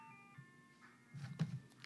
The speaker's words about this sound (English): What happened was the goddamn ice cream truck was out here. Just all in the audio? Yes, I know y'all heard it. It's so annoying.